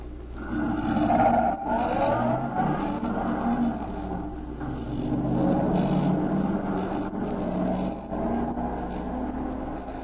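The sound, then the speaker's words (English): A car engine rumbles loudly and steadily for about ten seconds outside the Savoy, its growl rising and shifting in pitch as the vehicle pulls away, with no voices over it. “The other car is pulling away.”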